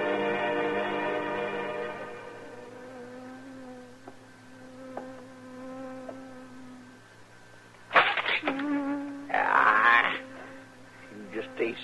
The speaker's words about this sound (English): Doggone bee buzzing around his head all day, get out of the body's brain.